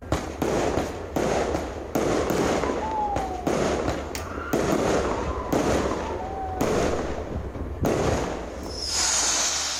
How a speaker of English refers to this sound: The loud explosive sounds from firecrackers and aerials that have been going off in some neighborhoods since Halloween have spooked cats and dogs, and many families have been reporting missing pets as a result.